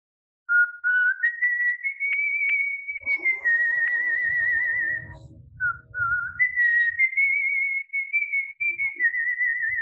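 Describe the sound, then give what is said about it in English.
A person whistles a pop-style tune, clear, with long sustained notes that glide between pitches and only brief pauses. A low rumbling noise briefly sits underneath midway through. “Did you know that whistling is one of my great talents?”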